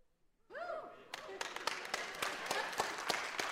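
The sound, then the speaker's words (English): A small audience breaks into applause after a brief cheer or whoop, with distinct, fairly steady claps that are loud, building slightly over a few seconds. “Got an applause for that one.”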